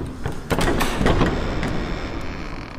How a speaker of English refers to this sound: A great door opened.